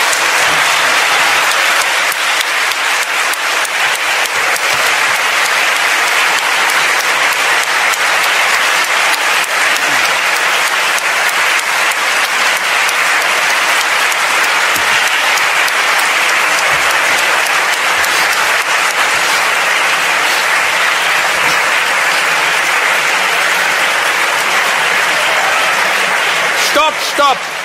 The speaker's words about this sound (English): We are not yet in communism. When we will take over, you will have to applaud the leader. Not now. Now you can stop.